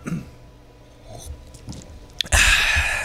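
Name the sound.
sipping water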